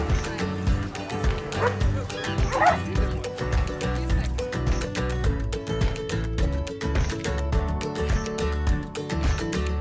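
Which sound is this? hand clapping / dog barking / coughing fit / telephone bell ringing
dog barking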